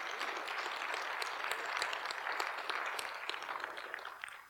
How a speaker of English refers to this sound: Yeah, clap, clap.